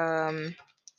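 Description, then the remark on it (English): A voice briefly hums or trails off, then a couple of small, sharp clicks from a faulty microphone crackle through in the background, quiet. “That's what's going on with my mic here with clicking noise.”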